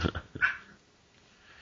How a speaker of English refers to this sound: you probably hear my dog in the background going crazy because I'm too loud for him, and she wants to go to sleep.